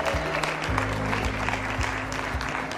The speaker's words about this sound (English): Come on, clap your hands. Come on, clap your hands. Thank the Lord for it.